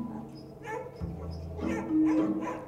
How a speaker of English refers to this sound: And these dogs are excited.